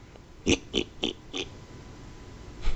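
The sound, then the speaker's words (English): A pig oinks in a quick series of four short grunts, then a brief pause before one last oink. The sounds are clear, with no talking. “How did they come up with that as a noise for a pig to make?”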